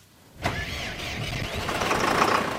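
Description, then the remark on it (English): A farm tractor engine cranks and catches after a short quiet moment, then settles into a steady, rumbling run with a faint whine, growing slightly louder, as a farmer checks the tractor on his wheat, corn and beet farm in the village of Kojenice, Poland, 9 miles from the Ukrainian border. “checks a tractor on the farm where he grows wheat, corn, and beets in the Polish village of Kojenice, just 9 miles from the Ukrainian border.”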